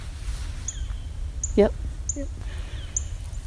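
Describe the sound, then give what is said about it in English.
A cardinal in a tree gives short, sharp high peeps, about four spaced a second or so apart, fairly faint over a low outdoor rumble, with a brief murmur in the middle. “Oh, cardinal, right there. Right in the tree. That's probably who's making that little peep.”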